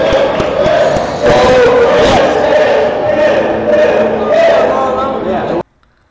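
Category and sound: crowd, audience cheering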